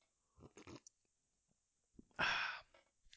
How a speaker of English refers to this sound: Sip of water.